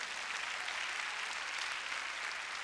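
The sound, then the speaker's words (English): An audience claps their hands in praise of God, steady, dense applause that fills the whole stretch evenly, a bright crackling wash of many hands with no voices standing out. “Would you clap your hands and praise God?”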